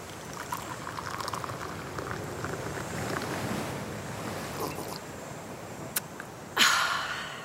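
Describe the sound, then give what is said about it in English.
Steady ocean surf rolls and hisses throughout on an island shore at sunset as the air turns chilly, with a brief louder wash of breaking water near the end; no seagull cries stand out clearly over the waves. “While I wait, I'm going to use my ears to listen to the waves and to the seagulls crying out as they fly overhead.”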